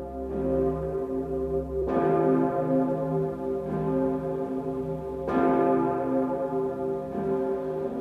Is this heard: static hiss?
no